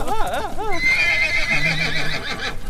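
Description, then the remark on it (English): A horse that is on fire lets out a loud whinny with quavering, rising-and-falling pitch that stretches into a long high squeal as it charges forward, pushing two men over, with faint clopping hooves underneath. “The horse, which is on fire, starts run. It charges forward, pushing 2 of the guys over.”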